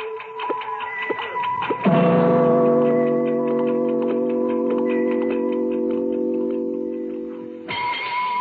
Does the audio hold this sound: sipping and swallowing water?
no